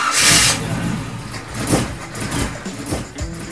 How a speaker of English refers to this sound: Hey, it sounds like it's time to swap out that old engine for something better,